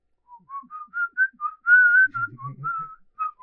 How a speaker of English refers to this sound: I'll be creeped out by whistling for a little while now. And every once in a while, you know, you're in the store or something, you hear someone just randomly whistling.